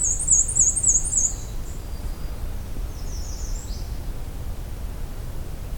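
A black-and-white warbler sings a bright, high, squeaky series of rapid repeated notes for about a second, clear over steady low outdoor rumble, followed later by a fainter brief call.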